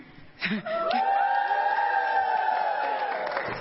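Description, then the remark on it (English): A crowd cheers and applauds steadily for a group of people, with a loud, sustained high-pitched whoop rising above the noise and held for several seconds. “Put your hands together for these people.”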